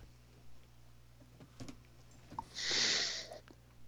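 A loud, hissing breath blown straight into a microphone lasts just under a second, after a few soft clicks and rustles over a steady low hum.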